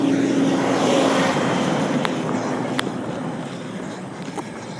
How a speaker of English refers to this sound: There's another concrete truck.